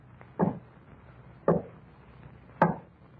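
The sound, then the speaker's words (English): Three slow, heavy knocks on a door, evenly spaced about a second apart, each a dull, resonant thud. No voices accompany them. “And there was a knocking at the door.”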